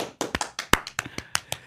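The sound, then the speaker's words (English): A short burst of applause: about a dozen sharp, crisp hand claps in a quick, slightly uneven rhythm, fairly loud, with no talking over them. “Round of applause, man.”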